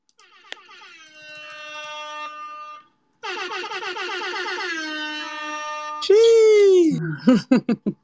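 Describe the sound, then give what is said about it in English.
Loud, sustained air horn blasts ring out in succession, with harmonic stacks and a brief gap, ending in a burst of rapid, choppy horn stabs, at the launch of First on SoundCloud's Clubhouse Sessions. “Let me get my air horn ready.”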